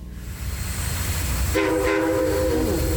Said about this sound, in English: Here it comes now. I'm not going to tell you which station this train has just pulled into.